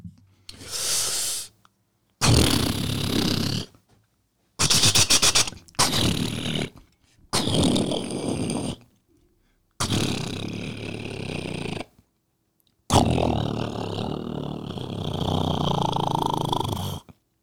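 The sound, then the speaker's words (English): A voice imitates a jackhammer in a series of loud, rough, rattling bursts separated by short pauses, some with a rapid stuttering pulse, ending in a longer sustained burst. No talking. “I'm going to do a jackhammer.”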